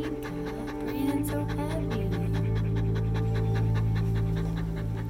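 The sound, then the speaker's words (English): A sick dog with antibiotic-resistant pneumonia breathes in rapid, labored pants, a steady rhythm of harsh breaths, heard over a sustained low musical drone that runs throughout. “And then the cough became so violent and her breathing labored.”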